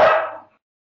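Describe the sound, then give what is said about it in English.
A single sharp bark from a dog walking by rings out, loud at first and fading quickly into silence, with no other sounds around it. “Sorry, a dog walked by.”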